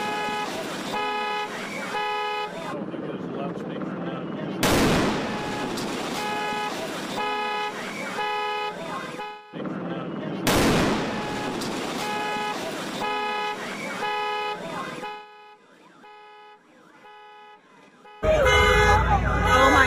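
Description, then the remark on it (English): A loud explosion booms as a police bomb squad detonates improvised explosive devices inside a police containment vehicle in South Los Angeles on a Wednesday evening. A second blast follows several seconds later, each fading into a rumble, with car horns and alarms blaring steadily throughout. “A major explosion in South Los Angeles on Wednesday evening damaged homes and injured 17 people, including police officers, as a bomb squad attempted to safely detonate improvised explosive devices”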